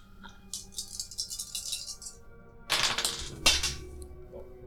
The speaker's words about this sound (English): Alright, so for finesse, could I have some d8s, please? Yeah, let's keep some of the dice over there.